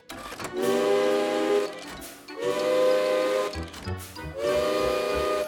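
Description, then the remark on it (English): Loud, shrill steam whistles from an old railway engine, rigged as an alarm clock outside a workshop that was once a windmill, blast in three long bursts with short gaps as the alarm goes off, each a sustained harmonic tone over a hissing rush of steam, with a rumbling mechanical clatter in between. “Ruth made an alarm clock using steam whistles from an old railway engine.”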